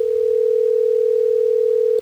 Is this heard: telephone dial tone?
yes